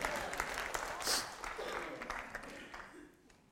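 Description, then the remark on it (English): An audience claps together in a dense, steady burst of many hands that gradually thins and fades toward the end. “And those that didn't clap, you need this today.”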